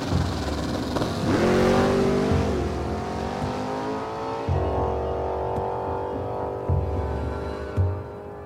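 A car engine revs hard and climbs in pitch as it speeds up, then surges again through repeated gear changes, loud and continuous with no one speaking.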